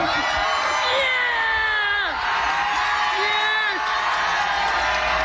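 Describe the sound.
A small crowd cheers and whoops loudly and continuously for a man eating his 40th chicken on the 40th day, several voices shouting over one another with rising and falling whoops, sounding energetic throughout.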